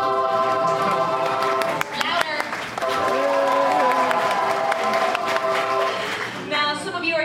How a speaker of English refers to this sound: Cheer and clap, everybody.